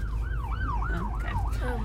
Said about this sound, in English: I'm always so scared when I hear sirens because I'm like, where do I go? Like, where are they and where do I go? Where do I go?